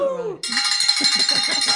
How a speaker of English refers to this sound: Yeah, you hear our bell ringing, our celebratory bell